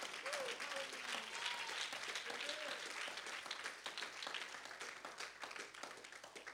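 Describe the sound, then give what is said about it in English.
An audience claps during a church service for every dad who stayed consistent through COVID-19, steadily for several seconds, a dense, even wash of many hands. A few faint voices call out briefly beneath the applause. “I want to give a hand clap to every dad that has been consistent through COVID-19 and you kept God first.”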